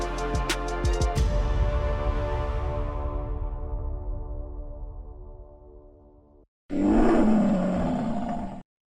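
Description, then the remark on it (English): A loud lion roar sound effect opens with a sharp burst, then rumbles and slowly fades over several seconds; after a brief silence, a second gravelly roar bursts in. “Watch out, here comes that roar.”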